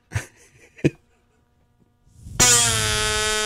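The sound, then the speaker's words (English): A fart whistle is blown: a couple of short sputtering bursts, a pause, then a loud, rasping, buzzy honk that swells up and holds steady to the end. “You could be a fart whistle aficionado.”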